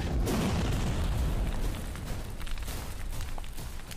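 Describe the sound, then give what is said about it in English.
Two heavy explosive blasts merge into one loud, deep, booming roar that lasts over a second, then ease into a lower, steady rumble with crackling debris. No voices. “And these two blasts sound off.”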